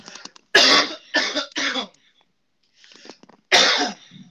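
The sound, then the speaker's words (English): A loud coughing fit: three harsh coughs in quick succession, a brief pause with faint throaty rasps, then one more forceful cough. No one speaks. “Hold on, I've got a cough again.”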